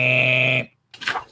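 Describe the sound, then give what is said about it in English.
A steady, shrill metallic screech holds for about half a second and cuts off, then after a brief pause a shorter, rougher grinding scrape follows as the metal cell doors of a prison's cell blocks slide open. “sounds like in the screeching of metal, sounds like all the cells are starting to open.”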